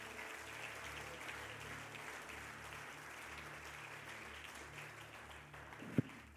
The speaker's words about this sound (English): Would you clap your hands to the Lord?